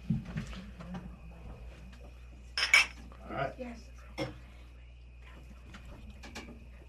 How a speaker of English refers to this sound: I was going to give a taste. Yeah, let's do a taste, do a clink.